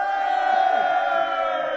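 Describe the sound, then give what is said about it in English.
A dense crowd roars in a sustained burst of cheering and shouting, loud and steady throughout, many voices blending into one continuous swell. “An outburst of cheering.”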